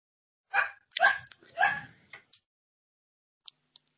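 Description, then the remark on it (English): A puppy yaps in a quick run of high barks and whines, muffled from outside the room where recording is happening, kept out because he wants to play, then two faint short clicks after a pause. “I am really sorry. My puppy's got really bad FOMO, but if I let him into the room where we're recording, he starts scrabbling at his toy box and wants to play.”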